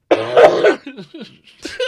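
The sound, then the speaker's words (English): A harsh cough bursts out loudly, followed by a few softer throaty rasps and a second rougher cough near the end, with no talking. “I apologize for coughing, but we were just taking too long.”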